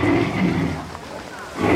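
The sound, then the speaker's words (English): A loud creature roar, deep and throaty, rumbles for nearly two seconds, easing slightly in the middle before swelling to full strength again at the end. “But the hectic pace of the world being what it is, the unusual sound was quickly dismissed by the passersby, and they continued on with their cluttered lives, the roar quickly forgotten.”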